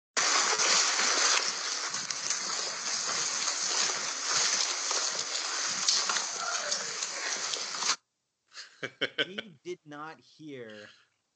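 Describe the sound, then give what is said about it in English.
A recording, played from an iPad held up to a microphone: heavy, thudding footsteps of people walking clump along steadily over a loud, rough rustling for several seconds, then stop abruptly and a voice briefly yells "Hey." “You hear the footsteps, the clump, clump, clump, clump.”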